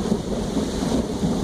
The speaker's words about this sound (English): You hear that thunder? That was lightning. Before that thunder.